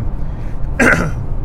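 throat clearing

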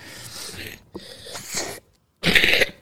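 cough

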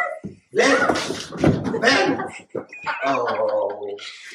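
dog whimpering and yipping

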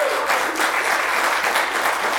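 audience applause

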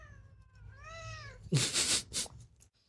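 cat meowing

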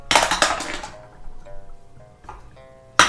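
dice being rolled

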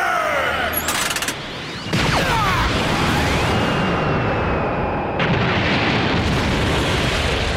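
cannon blast explosion

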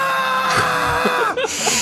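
loud human scream

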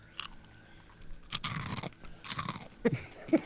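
crunching on potato chips

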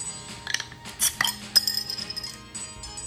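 beer glasses clinking

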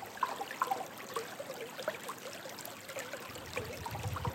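flowing creek water

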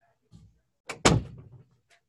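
door being shut

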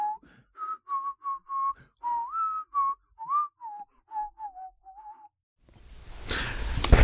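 human whistling a tune

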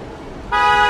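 foghorn blast

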